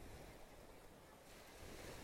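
ocean waves

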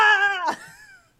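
cat meowing

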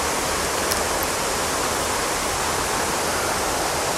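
flowing water

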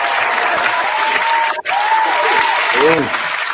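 round of applause

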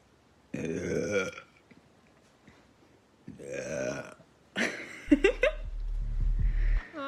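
belching

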